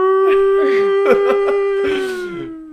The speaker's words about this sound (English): Yeah. The giant Purge alarm? That's a pretty good, like, thunderstorm alarm right there. The Purge alarm? It ended on a high note.